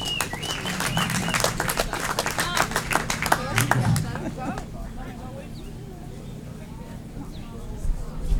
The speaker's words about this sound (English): We want to do a little something for you, so we have a little recognition that we'd like to present to each of you as charter members. As a token of our appreciation, thank y'all so much. Everyone, please give them a warm round of applause.